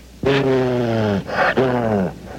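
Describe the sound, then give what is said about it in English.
A dog named Blue growls in two loud, drawn-out rumbling bursts, each sliding slightly downward in pitch, with a brief pause between them and no talking. “Can I bring my dog?”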